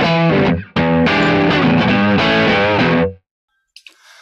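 A loud, distorted electric guitar amp tone, set to sound like a Marshall 4x12 cabinet in a big recording room, plays a chunky sustained riff with chords ringing into a roomy reverb, then cuts off abruptly into near silence with a faint noise at the end.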